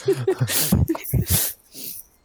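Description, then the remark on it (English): A person imitates the menacing growl of Scraps, a big dog, aimed at a kitty: a couple of seconds of gruff, rumbling vocal bursts mixed with harsh, hissing breaths, fading out at the end. “The twist is, yeah, maybe Scraps gets in on that too and then just starts like big dog growl menacing towards the kitty.”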